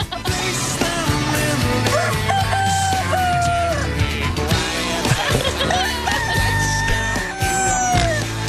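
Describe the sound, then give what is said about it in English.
Roosters crow one after another, each cock-a-doodle-doo a little different in pitch and shape, loud, over a dense, continuous background with a low steady rumble. “Every one of these is a different bird.”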